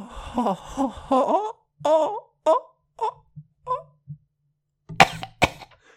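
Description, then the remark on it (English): A person moans and groans in a series of strained vocal bursts, then lets out two sharp coughs in quick succession near the end. “Oh, you heard me coughing?”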